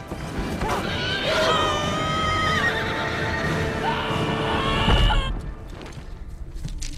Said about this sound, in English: your timestamp ended with the big horse hoof hitting the ground, and I never really did like that shot